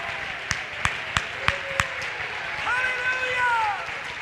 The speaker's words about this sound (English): If you feel his presence, clap your hands and shout to the Lord all over the building. Come on, jump to your feet and clap your hands and shout to the Lord.